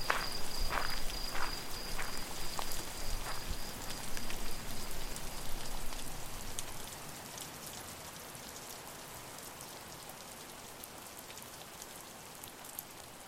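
Steady rain falls with a dense patter of drops hitting a surface. It is louder for the first several seconds, then settles into a softer, even hiss. No one speaks.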